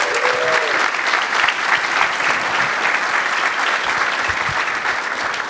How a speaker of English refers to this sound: round of applause.